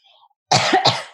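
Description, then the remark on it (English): A person deliberately gives two quick, harsh coughs for effect, in close succession, loud, after a moment of near silence. “That was my cough for effect.”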